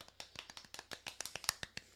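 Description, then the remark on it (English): Soft, quick hand clapping in a steady, even rhythm, about a dozen light claps over two seconds, fairly quiet with no voices, a gentle clap done as a test on microphones. “Let's see if we can clap on these mics.”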